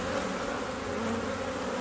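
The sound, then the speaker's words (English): A dense, steady buzz of many irritated bees swarming together, a continuous droning hum with a rough, agitated texture and no voices. “I'm probably going to get stung in my pants.”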